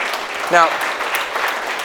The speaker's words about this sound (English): That gets golf claps from you, right? Like, oh, isn't that special?